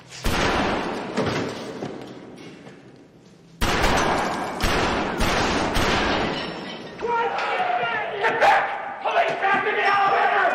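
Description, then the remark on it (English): Movie gunfight with repeated sharp, loud gunshots cracking out in irregular bursts, mixed with shouting voices and a dense, chaotic action soundtrack throughout. “That was, when I saw that, I thought that was one of the more realistic gunfights I've ever experienced in a movie.”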